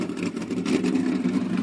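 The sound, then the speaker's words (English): A race truck engine runs loudly and steadily with a strong low drone and rough, slightly uneven surges as it is revved, while the truck has a throttle problem on the left side of the engine compartment; no voices are heard. “And fired the truck up, but he's going to start up having a little bit of a problem with the throttle or something on the left side of the engine compartment.”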